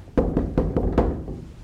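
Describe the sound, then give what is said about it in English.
Five firm knocks on a wooden door in a steady, evenly spaced rhythm, each with a hollow thud that rings briefly before fading into quiet. A preacher is knocking on a door during a sermon. “He's not kicking it in. He's knocking.”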